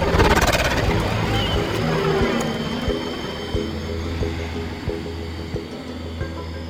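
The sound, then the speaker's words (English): A low, droning engine hum of Lardie gunships coming in from up high, heard from a front foxhole, loud and rumbling at first, then settling into a steady drone with a few soft, evenly spaced thumps. “We just reached the front foxhole when I heard the hum of Lardies coming in from up high.”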